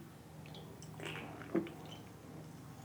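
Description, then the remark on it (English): A quiet sip from an energy drink can, a soft brief slurp followed by a small click or swallow, over a low steady background hum with no talking. “So relax. Sip time.”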